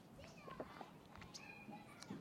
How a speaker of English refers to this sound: And even the kids playing in the background, Lord, streams of living water would flow from them.